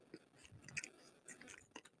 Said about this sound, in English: He's eating a honey bun.